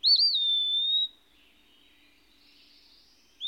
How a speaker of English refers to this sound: The wood pewee, the prevailing species in this locality, arrests your attention by his sweet, pathetic cry. There is room for it also in the deep woods, as well as for the more prolonged and elevated strains.